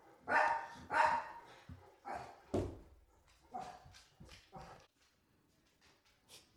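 A large dog barks at a truck driving down the road, several loud, deep bursts with short gaps between them, ending in a few quieter, fading sounds.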